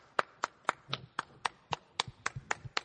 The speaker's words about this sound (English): What? He's clapping for himself. I'm clapping and for myself.